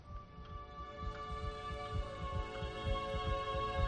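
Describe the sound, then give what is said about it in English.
A double heartbeat from someone with two hearts thumps steadily and quickly in the low range, its overlapping beats forming a dense doubled rhythm over a constant electronic hum, with no voices. “You have two hearts.”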